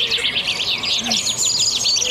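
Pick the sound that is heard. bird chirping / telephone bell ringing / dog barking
bird chirping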